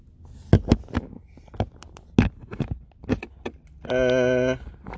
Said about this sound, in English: Turning off the car now.